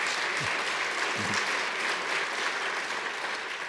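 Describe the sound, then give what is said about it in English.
Steady audience applause after a statement about the Afghan Adjustment Act, a dense wash of many hands clapping at once, sustained and fairly loud throughout with no pauses. “And for you as a veteran, you want to applaud that? Go right ahead.”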